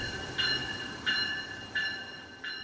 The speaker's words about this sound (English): Electric South Chicago train number 318 to Millennium Station is now approaching... Or Mr. Webb at Illinois River Correctional Center, who grew up close to a train in the Woodlawn neighborhood. It was a sound that comforted him.